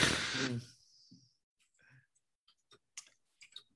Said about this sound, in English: No, my keyboard was clicking.